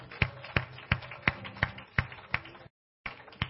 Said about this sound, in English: Somebody clap their hands unto the Lord and thank Him this morning.